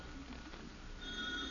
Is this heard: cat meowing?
no